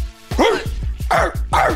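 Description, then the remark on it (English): A person's voice lets out three loud, gruff dog-like barks in quick succession, imitating a dog, over a steady low thumping beat. “I'd be in the back seat, I used to like to see how many whats and barks I could do without them noticing.”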